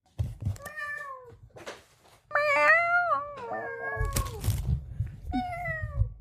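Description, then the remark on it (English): A person imitates a cat, giving four or five drawn-out, pitch-bending meows in quick succession, loud, over a low background rumble. “No, that was me. I didn't have the video up, and so I was meowing back at you.”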